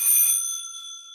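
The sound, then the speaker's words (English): A drummer's electric bell set, used to imitate a ringing telephone in film music, rings loud with a bright metallic ring, then its high overtones hum on and fade over about a second. No one speaks. “And I have an electric. Ah. Bell set from there.”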